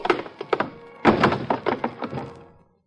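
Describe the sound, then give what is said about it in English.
A scuffle of heavy blows as a man is punched to the floor: a few quick, dull thumps, then a louder burst of thuds and knocks as his body crashes down, with no voices. “But then he runs into a real beautiful bouquet of knuckles.”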